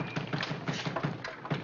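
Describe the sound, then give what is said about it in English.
Someone pounds rapidly and insistently on a locked door, a steady string of heavy thuds about four per second, fairly loud, with no voices over it. “Oh, what are you trying to do? Kick the building down?”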